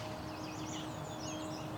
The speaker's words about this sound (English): On this morning, I'm walking the Woodland Cemetery in Burlington, Ontario, along the shore of Hamilton Harbor. A mix of currently breeding birds, migrating birds, and year-long residents is filling this urban landscape with song.